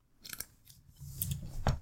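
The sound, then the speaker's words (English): A few quick sips of a botanically brewed natural pink lemonade, short slurping and wet mouth sounds in brief bursts, with no talking. “You're taking a quick sips up of your rose lemonade.”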